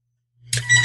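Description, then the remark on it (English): A telephone starts ringing after a brief silence, a bright, buzzy electronic ring with a low hum beneath it, fairly loud, with no voices. “Could you hear my phone ringing? Yes.”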